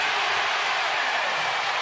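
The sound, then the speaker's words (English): A large arena crowd applauds and cheers after Gary Payton II, taking a pass after Curry's loose-ball rebound, makes a corner three-pointer in a basketball game against Minnesota, a dense, steady roar of clapping and voices that stays loud and unbroken throughout. “Everything he's doing tonight has been applauded.”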